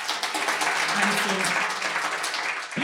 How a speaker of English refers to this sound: So everybody here was clapping their hands.